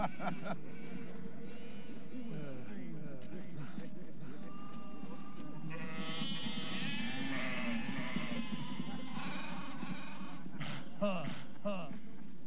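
Several sheep bleat in overlapping, wavering calls, some drawn out and some short, steady over a low murmur of background noise.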